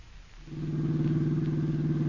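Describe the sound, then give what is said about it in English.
A car engine starts up after a brief quiet moment and settles into a steady, low droning hum with a slight rhythmic pulse, running on alone with no voices. The car is driving at night out to the McCaffrey mansion. “Margot and I were driving out to your uncle's.”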